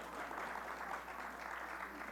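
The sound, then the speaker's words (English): An audience claps steadily for about two seconds, a dense, even patter of many hands with no pauses or voices standing out. “Come on, clap for my shame, guys.”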